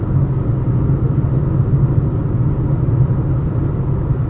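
A steady, low rumble fills the inside of a moving car, loud and unbroken throughout, with a dense bassy drone and no one speaking.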